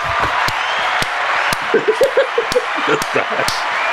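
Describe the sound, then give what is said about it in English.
Applause sound effect: a dense wash of crowd clapping with sharp, evenly spaced claps about twice a second cutting through, and voices calling out in the middle of it. “I don't know why you didn't give her the applause before.”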